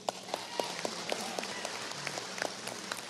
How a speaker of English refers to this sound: I want to hear some claps on this one.